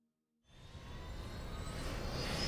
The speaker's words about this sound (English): With everything ready, Dan starts up the chopper and the team prepare to head out into the unknown.